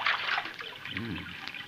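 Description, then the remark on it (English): Steady trickling of creek water where horses are being watered, a soft continuous burble, with a brief low vocal murmur partway through. “we struck it rich right here in this creek.”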